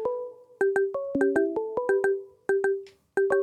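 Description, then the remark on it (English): A melodic phone ringtone plays clearly, a quick run of bright, struck notes that ring out and decay, repeating its pattern with a short pause. No one speaks. “All right, so we got this ringing.”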